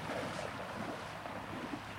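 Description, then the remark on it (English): A rowing boat is walked out into bay water by a crew of four rowers and a coxswain, with a steady, fairly loud wash of lapping water and gusting wind throughout and no voices. “The team walks the boat out into the bay.”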